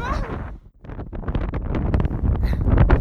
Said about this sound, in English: We're still crossing. I'm just trying to shield the wind from the microphone. It was so windy.